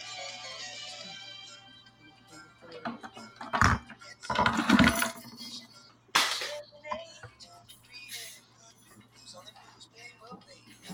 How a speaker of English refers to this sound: You guys, like, moving some silverware around over there? Keys.